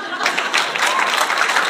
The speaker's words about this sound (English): Good. Clap for her.